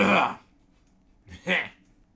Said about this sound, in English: Hey, is it cool with you guys if I like clear my throat real quick?